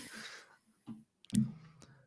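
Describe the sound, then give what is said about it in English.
A few sharp clicks and clunks of a microphone stand being adjusted, spaced irregularly with short pauses between them and no talking. “Sorry, I'm having some physical difficulties over here with my mic stand.”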